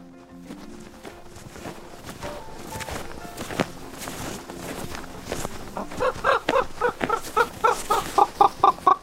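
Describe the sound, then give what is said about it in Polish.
Common ravens calling in a forest in the Kośne Chamry protection district, with scattered hoarse croaks at first, then a quick run of repeated knocking calls that grows louder toward the end. No voices. “Razem z Marcinem w poszukiwaniu kruków wybraliśmy się do lasu w obwodzie ochronnym Kośne Chamry.”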